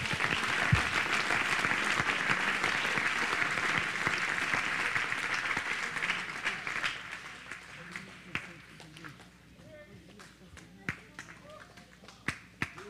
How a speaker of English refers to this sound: Turn to your seats, clapping your hands.